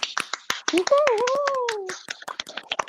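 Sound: audience clapping in welcome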